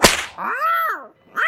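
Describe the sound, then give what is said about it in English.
A bullwhip cracks once, sharp and loud, right at the start, followed by a drawn-out tonal, wavering cry that rises and falls, then another brief tonal burst at the end. No speech. “I'm going to swing this bullwhip and try to frighten it into that corner.”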